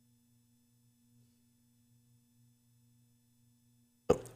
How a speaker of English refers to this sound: Good coughs are awesome, guys. I'm just telling you, it's so great to have a good cough.